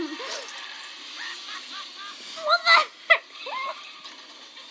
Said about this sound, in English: This is like, I'm doing a crime. I'm chewing really loudly.